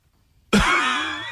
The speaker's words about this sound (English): Oh, no. And I'm like, that's a dry cough if I've ever heard a dry cough.